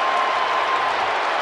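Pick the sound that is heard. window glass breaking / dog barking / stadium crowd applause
stadium crowd applause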